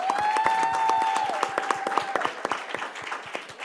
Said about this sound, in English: I see what you did, but he's also a New York City police officer, and we want to applaud him for that.